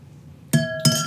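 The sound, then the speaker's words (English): A wine glass clinks twice in quick succession as Fino sherry is dumped out of it, each bright strike leaving a steady, high ringing tone that lingers between the hits. No one speaks. “So we're dumping, guys.”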